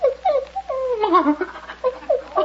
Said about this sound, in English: So that's what's in the basket. A puppy.